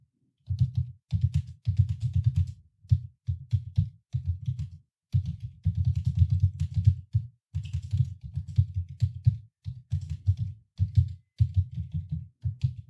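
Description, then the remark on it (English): Rapid clatter of a computer keyboard being typed on in steady bursts with brief pauses between, low thumping keystrokes and clicky highs, no voices. “Is that the most incredible typing, huh?”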